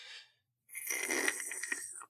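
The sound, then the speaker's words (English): A voice imitates a man slurping soup from a large bowl during a film session: a quick airy suck, a brief pause, then one long, wet, hissing slurp with small surges, fairly loud and with no talking. “But my goodness, he sips on this soup the whole film session for like, it's like a 25, 30 minute film session, by the way.”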